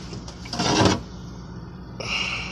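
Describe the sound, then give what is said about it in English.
Someone rummages through a fridge looking for something to drink: a loud, rustling clatter of shifting items, then quieter shuffling and a softer rattle near the end. No one speaks. “I'm just looking through the fridge for something to drink.”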